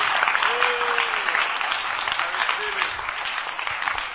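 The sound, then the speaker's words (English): Sustained applause from a church audience during a sermon, a dense steady wash of many hands clapping at an even level, with faint voices calling out beneath it. “Father, those who are clapping, dash them something today.”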